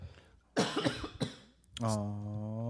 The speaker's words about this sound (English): Sorry, that was me coughing.